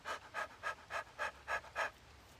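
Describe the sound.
A person pants rapidly with mouth open and tongue out, imitating a puppy to practice Breath of Fire breathing: seven quick, breathy bursts in a steady rhythm, fairly quiet, with no talking.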